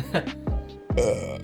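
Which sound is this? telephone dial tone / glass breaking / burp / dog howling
burp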